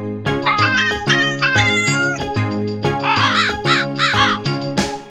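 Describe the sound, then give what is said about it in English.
A short song intro played with cat meows and crow caws as the instruments alongside island percussion, the pitched meows and harsh caws falling in a steady rhythmic pattern over a repeating low beat. “which has had its instrumentation changed to the classic combo of island percussion, cat and crow.”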